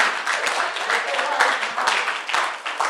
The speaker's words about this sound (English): Someone who stops clapping in church. We say, give the Lord a clapping hand. Give the Lord a clapping offering.